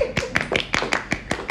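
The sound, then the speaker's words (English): About eight sharp, crisp claps in a steady, brisk rhythm, fairly loud and with no voices over them. “so let's clap”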